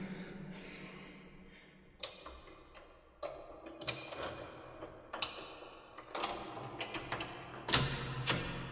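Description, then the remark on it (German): Quiet metallic clicks and scrapes come in irregular bursts as a door lock is fiddled and worked open, with soft breathing and snorts between them and no talking. “Versuch einfach die Tür aufzumachen und dann wird's schon.”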